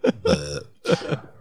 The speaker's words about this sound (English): Oh, pardon me, just burped.